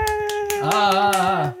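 Light, polite golf clap: roughly seven or eight soft claps in a steady, evenly spaced rhythm, heard over a sustained tonal hum.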